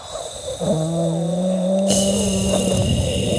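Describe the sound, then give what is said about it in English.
A single voice holds a sustained, buzzy, rattling tone made by pushing air through the back of the throat for a couple of seconds, fairly loud, growing rougher and breathier toward the end. “But instead of saying the words and having the tone come out, you're going to just push air through the back of your throat, right?”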